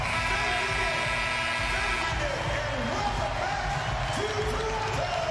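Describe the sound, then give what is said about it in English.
A large arena crowd at a Toronto Raptors game against Philadelphia gives Raptors coach Nick Nurse a standing ovation, cheering throughout in a steady loud roar of applause and voices with scattered whoops and shouts rising above it, sustained without a break. “And a standing ovation for Coach Nurse.”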